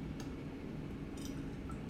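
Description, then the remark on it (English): A few light, high-pitched glass clinks, as in a toast, scattered over two seconds against a steady low hum, with no talking. “In fact, actually, let's do a fucking cheers, man, for the fallen soldier.”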